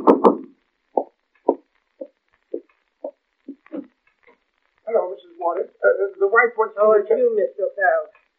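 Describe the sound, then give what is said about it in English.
A series of about eight firm, evenly spaced knocks on a door, followed by people talking. “Someone's at the door.”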